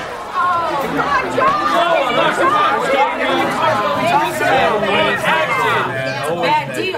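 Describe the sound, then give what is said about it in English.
A crowd of opposing sides at a town hall meeting shouts and talks over one another at once, a loud, dense, continuous babble of overlapping yelling with no single voice standing out. “Mayor Gimbel bangs his gavel, but it doesn't quell the yelling from the opposing sides.”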